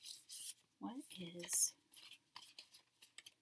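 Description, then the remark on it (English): A deck of oracle cards being shuffled, with a series of quiet, papery rubs and riffles in irregular bursts, plus a brief murmured voice partway through. “Okay, so I'm going to shuffle the cards.”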